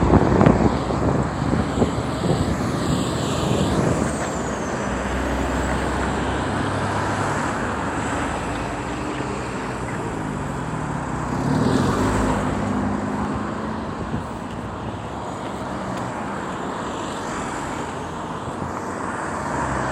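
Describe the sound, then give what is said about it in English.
Lorries and trucks rumble past on a busy stretch of road, a loud continuous low roar of traffic with engines swelling and fading as they go by, no talking. “lot of lorries and trucks on this stretch.”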